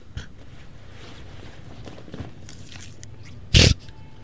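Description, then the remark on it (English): A single loud, crisp crunch of a man biting into an apple, preceded by faint soft clicks and rustling. “So, he picks up an apple and he's chewing the whole scene.”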